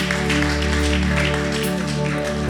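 A steady wash of crowd applause, dense and continuous, mixed with sustained low musical tones that hold throughout.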